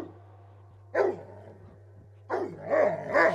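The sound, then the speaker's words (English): Dogs bark in two bursts, a single sharp bark followed after a pause by a longer run of overlapping, yelping barks, over a low steady hum with no talking. “Why don't you just invite the dogs in? They just want a little here, boy.”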